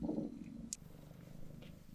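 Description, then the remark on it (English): A cat purrs softly and steadily, a low rumbling drone with a gentle rhythmic pulse, broken once by a faint brief click. “Okay, I think the kitty is quite happy to be here.”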